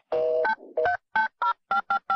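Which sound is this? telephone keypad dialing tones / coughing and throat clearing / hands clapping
telephone keypad dialing tones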